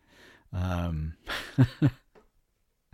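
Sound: cough or throat clearing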